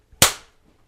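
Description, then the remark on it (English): A single loud, sharp hand clap, made to sync audio with video, cracks out of near silence, then its short ringing tail fades away within a fraction of a second. No voices. “Clap.”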